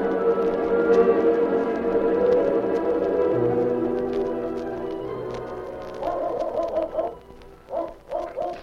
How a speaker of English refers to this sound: If Joe Jolly's story is right, you'll soon hear a dog barking.